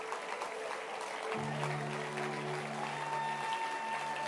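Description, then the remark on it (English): An audience claps their hands during a morning service in a steady, dense wash of applause, and a low sustained organ-like tone enters partway through beneath the clapping. “Clap your hands.”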